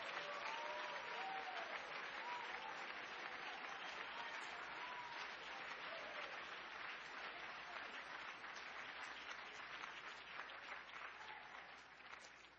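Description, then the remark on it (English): An audience claps steadily to thank God for the message, a dense wash of many hands sustained throughout and tapering slightly near the end, with a few faint voices mixed in. “Oh, we ought to clap our hands and thank God for the message.”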